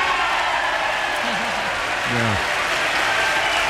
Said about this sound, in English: I'm going to let this applause play out in real time, just to give you a sense. This is the entire joint session applauding.